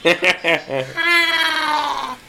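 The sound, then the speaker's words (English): A few short, sharp vocal bursts lead into a long, strained, high-pitched shriek lasting over a second, loud, sounding like a human voice imitating the defensive scream of the screaming belch toad, which inflates its body and shrieks as a defense mechanism. “To be, like, I got the name because, as a defense mechanism, they inflate their body and they literally shriek.”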